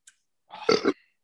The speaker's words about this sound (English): I got to burp first.